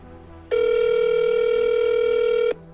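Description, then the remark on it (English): A single telephone ring heard down the line: a steady, buzzy mid-pitched tone lasting about two seconds that starts and stops abruptly, with faint line hiss before and after. “The rings continue. The pauses between them seem to get longer and longer.”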